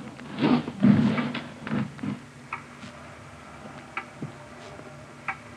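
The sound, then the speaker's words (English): A clock ticks steadily with sharp, evenly spaced clicks, preceded by a few heavier thumps and shuffling noises at the start, over a low background hum. “It's a loud clock, ain't it?”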